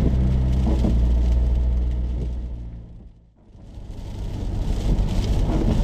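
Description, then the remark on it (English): Heavy rain lashes down on a car driving in wet, windy weather in County Limerick, over a deep, steady engine rumble and road noise. The wash of sound briefly fades and dips midway, then swells back to full strength. No one speaks. “The rain is lashing down.”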